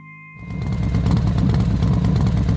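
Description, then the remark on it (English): A motorcycle engine kicks in after a brief low hum and runs loud, with a rapid, steady chugging rumble that continues to the end; no one speaks. The motorcycle is at the Doris Estate. “I'm turning off my motorcycle.”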